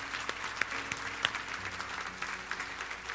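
An audience claps steadily in a dense, continuous wash of many hands, with a few sharper individual claps standing out, sustained at moderate loudness throughout.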